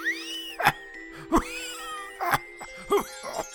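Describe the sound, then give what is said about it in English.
Tiny bells jingle and shimmer in a bright, sustained tinkle, broken by four soft jangling bursts spaced roughly evenly, with ringing high tones gliding up and down between them. No one speaks. “Where did those tiny bells...”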